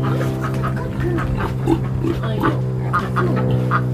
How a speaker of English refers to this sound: Beatrice, the other big farm pig over there, she was found in somebody's yard in Minneapolis digging up the garden.